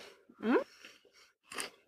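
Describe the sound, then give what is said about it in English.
Crunchy chewing of a crunchy chocolate cookie with sea salt, in a few short bursts, with a brief voiced hum mixed in partway through and no clear speech. “Initially, I was like, that is too crunchy.”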